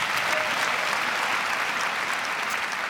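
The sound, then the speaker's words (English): A crowd claps steadily in sustained applause, a dense even patter of many hands that stays loud throughout the three seconds with no one speaking. “That's a place to applaud.”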